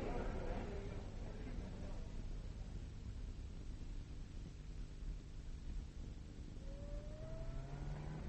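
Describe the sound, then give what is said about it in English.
A parked car's engine idles outside with a steady low rumble that fills the whole stretch, and a rising whine near the end suggests the engine starting to rev. “My car's outside.”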